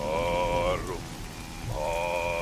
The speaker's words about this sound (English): stood like a statue in the middle of the small cemetery, in the pouring rain, performing an ancient, sinister ritual.